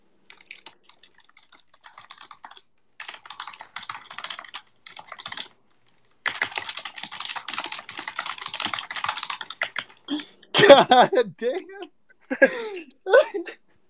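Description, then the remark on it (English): Rapid, forceful typing on a computer keyboard clatters loudly in dense bursts for about ten seconds before a voice starts talking at the end. “Damn, dude, going to war with that keyboard.”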